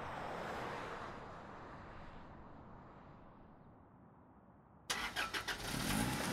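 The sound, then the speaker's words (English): A van engine rumbles low and steady, fading slightly, then a sudden burst of rhythmic cranking pulses gives way to the motor catching and running loudly. “I'm so glad you know how to drive this thing.”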